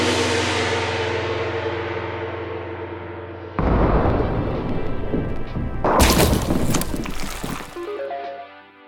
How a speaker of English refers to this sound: And now for the traditional end of episode gong, followed by the sound of a bowling alley where the pins have been replaced by tall, thin watermelons.